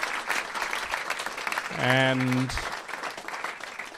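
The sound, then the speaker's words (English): An audience at a live show claps in a steady, dense round of applause, with one voice letting out a brief cheer midway as the clapping carries on. “But could I please get you all to give a huge round of applause again for my dad”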